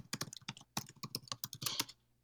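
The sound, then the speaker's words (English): Rapid clacking of a mechanical keyboard, a dense run of sharp key strikes in an uneven typing rhythm with no voices. “I have a clickety-clack keyboard, and it doesn't come up on Discord, but it does come up on my microphone”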